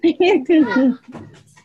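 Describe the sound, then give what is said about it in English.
A dog whimpers in a few rising, whiny bursts, then breaks into soft, quick panting that trails off at the end. “Now the dog, everyone's made it, damn.”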